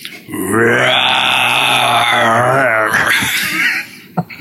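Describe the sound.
A man in a studio lets out a long, loud, guttural roar, sustained for about three seconds with a rough, growling tone before trailing off into a breathy exhale.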